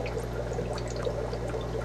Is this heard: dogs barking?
no